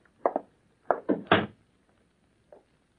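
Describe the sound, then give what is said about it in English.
A door is pushed shut with a cluster of wooden thumps and clunks, the loudest in the middle, followed by one faint knock a moment later. No one speaks. “Come in. Shut the door.”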